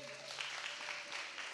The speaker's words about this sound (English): Good job. Thank you, team. Give them a hand clap. Honor them.